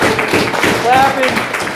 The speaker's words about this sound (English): Clapping doesn't even do justice, right? Right? It's like, it's nice that we're clapping, but it's like, right? It's cute, right? He doesn't need our clapping, I can tell you that much, right?